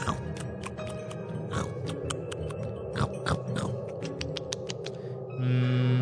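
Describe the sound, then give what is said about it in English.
Dry crunching as a strawberry-flavored food brick is chewed, with sharp irregular crackles repeating for several seconds before a brief, steadier rustling noise at the end. “All right, it is time for me to eat.”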